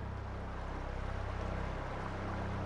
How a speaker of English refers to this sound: Isis, the powerful goddess of nature and magic, was sailing along the Nile River, bound for Egypt.